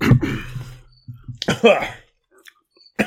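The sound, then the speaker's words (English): Someone coughs in a couple of harsh, sputtering bursts with throat-clearing noises between them after a bite of a spicy, crunchy snack went down the wrong way, followed by a brief quiet pause. “I mentioned sexy, you start coughing.”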